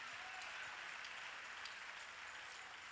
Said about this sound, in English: Come on, clap your hands and thank God for the blood.